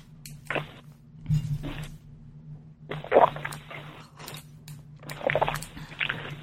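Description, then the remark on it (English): Someone takes a drink of water, with a few soft bursts of cup handling, gentle sloshing and swallowing spaced across the moment, over a faint steady hum and no talking. “Excuse me, I'm going to take a drink of water.”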